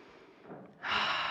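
A deep breath drawn in through the mouth, starting as a soft airy intake and swelling into a louder, rushing inhale near the end, without any talking.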